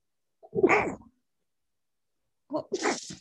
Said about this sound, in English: Bless you. Sorry. Yeah, thanks. Sorry about that, laddie.